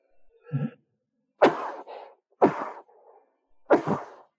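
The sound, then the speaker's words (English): Three sneezes in quick succession from someone with a cold, each a sharp, loud burst roughly a second apart, preceded by a short intake of breath, with no talking. “Bless you, three times.”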